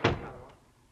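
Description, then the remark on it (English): A single solid door shuts with a sharp, heavy thud at the start, followed by a short fading rumble and quiet room tone. “Close the door”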